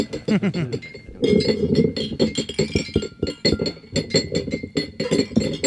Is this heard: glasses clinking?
yes